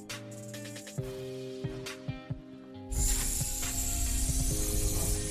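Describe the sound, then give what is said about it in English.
A sound effect of a heavy 'panic chamber' door closing: a steady hum with several sharp ratcheting clanks, then a loud, sustained hissing rush as it seals, with more clanks beneath. No voices. “I'm going to open it back up and talk about him. He's in the panic chamber. We will close the doors on him.”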